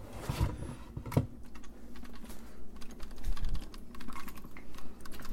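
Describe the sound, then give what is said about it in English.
Rapid, irregular tapping on the empty canister of a boiler pot, with crisp hollow clicks scattered over a few seconds and a low hum underneath. No one speaks. “That is the empty canister of a boiler pot.”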